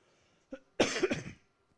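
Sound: cough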